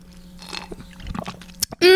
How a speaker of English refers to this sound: Okay. I think we need to take another sip of the drink. You can hear the ASMR. You can hear the slurp.